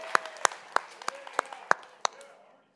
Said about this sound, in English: First thing, I'd like us all to give the worship team a round of applause. They did a phenomenal job this morning.